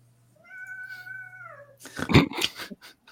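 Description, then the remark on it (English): A cat lets out a long, steady, drawn-out meow, then breaks into a loud, harsh burst of growling and hissing, with no talking. “Cat is upset.”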